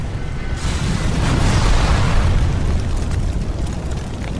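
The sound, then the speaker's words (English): A huge, sustained explosive roar with deep rumbling low end and a broad hissing wash that swells and lingers for several seconds, loud, with no voices, as three storage areas holding 75,000 pounds of explosives accidentally ignite at the DuPont explosives factory in Carney's Point. “Three storage areas filled with 75,000 pounds of explosives are accidentally ignited, creating an inferno.”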